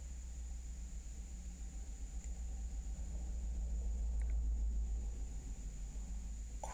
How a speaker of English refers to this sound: That was a big-ass truck.